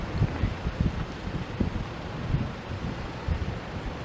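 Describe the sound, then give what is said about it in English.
Strong wind buffets the microphone in heavy, low rumbling gusts that thump and roar continuously and loudly for several seconds, with no voices, during a storm with hail and debris blowing through the air. “Really windy though.”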